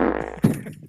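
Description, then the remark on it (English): A voice imitates a fart with a buzzy, sputtering lip sound, then a sharp burst of breath that trails off. It's a single short imitation with no other talking. “He's like, he like laid down and then like lifted his legs like behind his head, and then he's like look at the lighter, and then he farted into it, and then it was a blue flame.”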